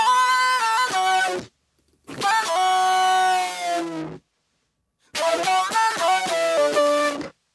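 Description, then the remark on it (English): An effected electric guitar part, doubled down an octave and blended with the original clean boosted signal, plays three loud, buzzy, harmonically rich phrases of sustained notes, each cutting off into brief silence before the next. “Which sounds really weird on its own, but then when you combine the two with the original clean boosted signal, you get this.”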